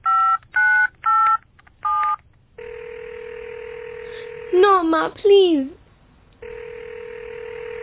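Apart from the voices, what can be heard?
telephone number being dialed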